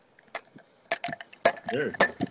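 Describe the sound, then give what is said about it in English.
Champagne glasses clink together several times in a toast, bright ringing taps spaced about half a second apart, with a brief murmur of voices mixed in. “Hey, we're gonna cheers to you.”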